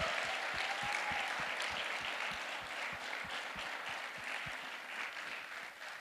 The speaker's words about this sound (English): Clap our hands for our graduates this morning.